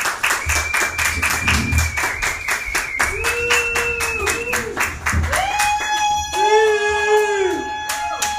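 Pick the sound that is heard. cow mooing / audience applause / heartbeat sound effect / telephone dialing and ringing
audience applause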